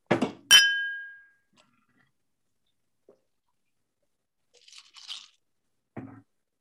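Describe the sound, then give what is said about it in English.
A brief rustle, then glasses of liquor clink together in a toast: one sharp, bright chime whose ring fades over about a second. Quiet follows, with faint handling noises later and no talking. “All right, so cheers.”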